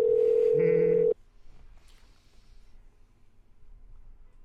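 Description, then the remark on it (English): A single loud electronic phone ringback tone, heard while calling someone, a steady buzzing pitch lasting about a second, cuts off abruptly and leaves only faint, low background noise. “I'll give him a call. I'll call him right now.”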